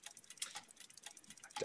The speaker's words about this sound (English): Eerie because you hear the ticking of the clock in the temple, and without skipping a beat, it just gets louder as we show up in the center of a workshop floor, still sitting cross-legged, but now there are just dozens of clocks lining the wall.